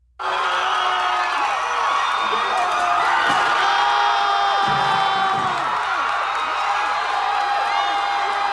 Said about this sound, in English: So they're pulling down the statue, and people are celebrating and cheering and kicking the statue and stomping on the statue